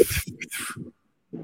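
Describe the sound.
A voice imitates air rushing out of a released helium balloon with a couple of breathy hissing bursts over a sputtering hum, then a short pause and another brief voiced sputter.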